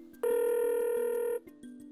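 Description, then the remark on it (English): A single ringback tone on an outgoing phone call, a steady electronic ring lasting about a second, heard clearly over a faint low hum and soft clicks, with no one speaking. “It's ringing.”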